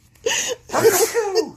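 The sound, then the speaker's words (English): A loud sneeze bursts out with a short breathy lead-in, then trails into a voiced exhale. No one speaks. “I was allergic too, but I didn't Whew. Sneeze.”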